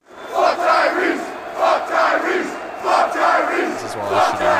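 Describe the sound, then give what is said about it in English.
A large crowd at a basketball game chants in a steady, rhythmic unison, loud and continuous with repeated swells every second or so, echoing through the arena. “I'm going to go over some of my favorite crowd things from the game.”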